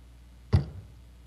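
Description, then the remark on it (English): A single sharp hammer blow on a cold steel spike being driven in the crucifixion of Jesus, a hard clanging strike followed by a short, low ringing decay that fades within a fraction of a second, with nothing else around it. “Can you hear that hammer ringing on that cold steel spike?”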